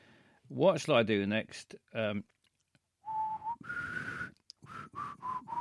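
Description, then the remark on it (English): A person whistles a short, breathy TV theme tune, the Star Trek theme, for listeners to guess: a few held notes and quick choppy phrases with air hiss around them, after a brief burst of voice at the start. “Call in and whistle your theme tune and we'll try and guess it.”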